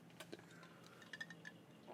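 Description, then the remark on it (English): Ice balls clink against the side of a glass of bourbon in a few light, bright taps over a soft swirl of liquid, fairly quiet, with a low hum underneath. “I like these ice balls because they water down the drink very appropriately.”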